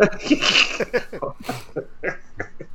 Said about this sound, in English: Sneezed like a girl.